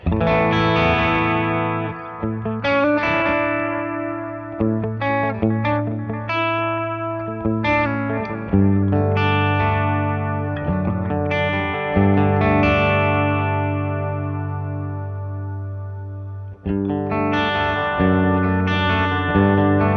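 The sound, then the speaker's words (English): Electric guitar played through a delay pedal with its tone control turned fully counterclockwise for a bright, trebly tone, chords and notes ringing out with repeating echoes that trail and overlap, steady and fairly loud with no talking. “So I'll start with the tone all the way counterclockwise, which is I believe it's going to be brighter.”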